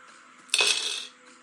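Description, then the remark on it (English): A handful of 22 dice clatters onto a hard surface in one bright burst of rattling clicks that quickly settles into quiet, with no voices. “That gives him 22 dice to roll to make 9 successes.”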